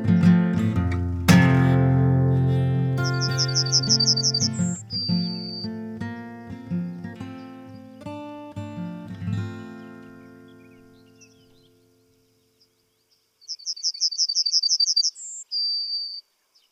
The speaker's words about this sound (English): So Niall, want to talk about our first songbird that we've spoken about in this series, and that's the Yellowhammer.